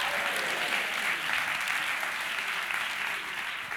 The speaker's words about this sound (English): Clap your hands and say, I agree.